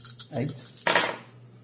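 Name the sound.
dice being rolled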